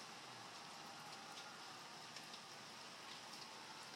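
nature, rain falling outside

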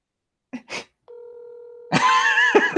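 signal or alarm, telephone dial tone

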